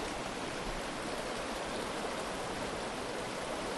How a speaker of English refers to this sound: That's why we're sitting here next to the flowing water.